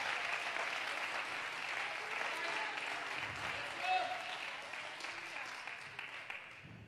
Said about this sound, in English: I wish you'd clap your hands to the Lord and praise Him.